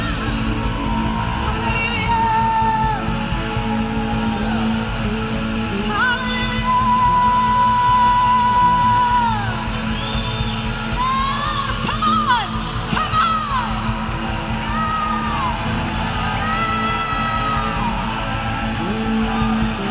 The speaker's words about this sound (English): Come on, shout one more time.